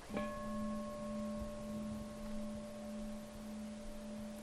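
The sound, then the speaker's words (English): A single meditation bell is struck once by the teacher during a Buddhist talk. Its low, steady tone with bright overtones rings on and slowly fades over several seconds, with no voices. “So if we take an experience like a sound, I'll ring the bell, hear it as just sound.”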